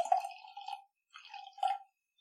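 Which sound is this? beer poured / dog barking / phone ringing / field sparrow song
beer poured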